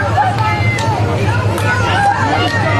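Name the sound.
crowd chanting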